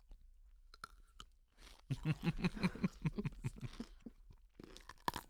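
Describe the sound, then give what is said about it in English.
Someone bites into a crunchy half-sour pickle, a sharp snap followed by a quick series of wet, rhythmic chewing crunches, loud against a quiet background. “That is, it's supposed to be horseradish, but it might be half sour. So I'm going to take a bite into the mic.”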